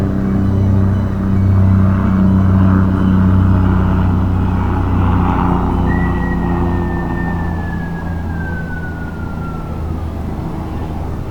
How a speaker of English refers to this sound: Yeah. Had to listen as that went by because the planes sound cool.